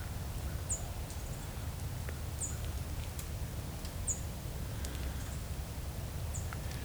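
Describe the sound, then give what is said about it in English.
An American tree sparrow, a winter species, gives four short, high call notes spaced a couple of seconds apart over a steady low outdoor rumble, near Hamilton, Ontario, in Valens Lake or Dundas Valley Conservation Area. No one speaks. “So I found an American tree sparrow calling here.”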